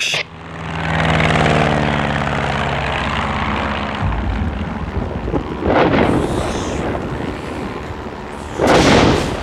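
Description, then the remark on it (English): A propeller plane's engine drones loudly as the pilot takes the plane down, its pitch sliding steadily downward, then gives way to a rough, rushing roar with two sudden louder surges of hissing noise. “Charlie Bravo to Tower, we found the knife. I'm taking us down.”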